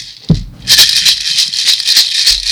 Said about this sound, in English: Sorry, we couldn't get jingle bells, but we have these maracas.